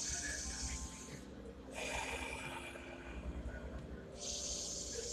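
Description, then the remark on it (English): Slow, deep breaths, each about 7 seconds long, are drawn in through the nose, airy and hissing. They come in long waves with short pauses between them. The breathing is fairly loud, with no talking. “Exhale, inhale through your nose. Deep, about 7 seconds.”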